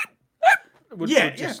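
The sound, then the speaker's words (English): A person mimics a dog yelping: one sharp, high-pitched yelp, a brief pause, then a longer whining cry. “Oh, you know, like when you go and hit a dog with a newspaper and it yelps, or you step on its foot.”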